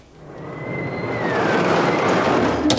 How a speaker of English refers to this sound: And the roller coaster.